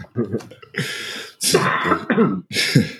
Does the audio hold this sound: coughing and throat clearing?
yes